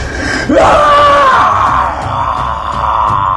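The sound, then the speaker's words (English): A person imitates a shrill, cat-like scream like the one in Jurassic Park, a loud rising screech that holds steady for a few seconds before trailing off, unaccompanied by talk. “You hear this scream. This... like this... this cat-like scream?”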